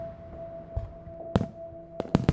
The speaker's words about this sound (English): Two of the guards admire the show. I love fireworks.